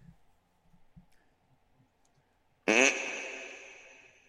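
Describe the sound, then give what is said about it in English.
After a couple of seconds of faint low rumbles, a single loud, deep burp, amplified with reverb, erupts and trails off in a long, echoing reverb tail that slowly fades. “Oh, you mean amplify my burp.”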